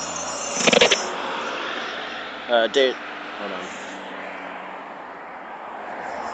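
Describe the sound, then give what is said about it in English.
A steady wash of traffic noise from a stream of passing cars rolls on throughout, with a brief louder burst early on as a vehicle goes by; a voice speaks briefly over it. “There's, like, a stream of cars right now.”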